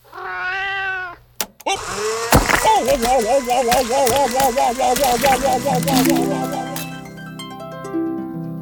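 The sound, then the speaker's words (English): A cat lets out a clear, drawn-out meow, then after a sharp knock comes a long run of wavering, warbling cries amid low background clatter and murmur. “Hi, kitty.”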